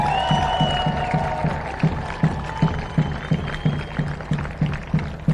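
An audience claps for a speaker in a steady, rhythmic beat, roughly three claps per second, with scattered whoops and cheering voices rising over the sustained crowd noise.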